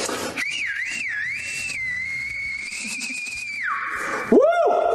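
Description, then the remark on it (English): A shrill, reedy whistle, blown by mouth like a woodwind, warbles up and down, holds a long wavering note, drops lower, then ends in quick swooping slides, loud with no talking. “He's going to play the shit pipe here.”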